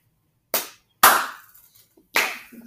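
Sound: slow clap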